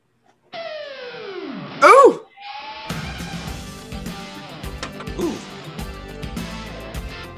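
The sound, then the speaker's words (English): A Christian rock song with heavy guitars: a sliding, wailing note and a sharp loud burst open it before the full band crashes in with dense distorted guitars and steady pounding drums. “He is doing the thing where the vocals are a lot less intense than the music, which is a classic Christian music thing.”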